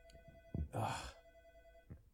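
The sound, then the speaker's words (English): A room telephone rings quietly in the background with a steady electronic tone. A breathy rush and a couple of soft low thumps pass over it partway through. “Dude, my freaking room phone is”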